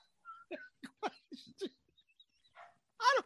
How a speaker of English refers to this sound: There's a fucking barking dog outside. It's driving me nuts. I'm like, it's like Summer of Sam. Would you please shut the fucking dog up?